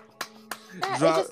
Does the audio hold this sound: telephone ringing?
no